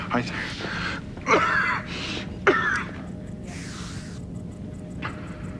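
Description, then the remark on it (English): Raspy, wheezing breaths from an alien's mechanical breathing device, a few strained inhales with a whistling edge, fairly loud over a low steady hum. “Yeah, this guy has a little breathing device, obviously, from his, you know, planet that's polluted”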